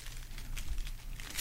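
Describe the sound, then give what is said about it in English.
Crinkling and ripping of a paper food wrapper by a man who is eating, heard as a few short, crisp bursts of rustling over a low background hum, with no voices. “He's going to smack and chew and rip paper.”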